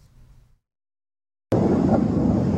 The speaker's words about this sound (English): A missile rips through the skies, releasing a loud roar. China's People's Liberation Army is conducting live-fire drills near Taiwan's coasts.